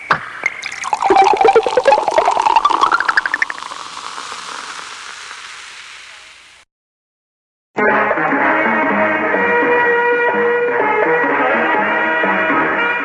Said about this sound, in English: Coca-Cola Pop and Pour.